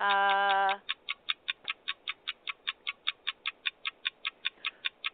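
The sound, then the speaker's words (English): A short tonal chime opens, then a steady run of crisp, evenly spaced ticks, about four per second, like a game-show countdown timer, loud with no talking. The timer is started for a round of a word-guessing game. “Put the clock on.”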